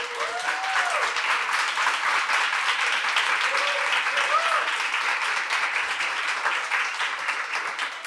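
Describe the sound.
An audience applauds steadily, a dense, even wash of many hands clapping that holds at a fairly loud level throughout, with faint voices and a few brief whoops rising above it.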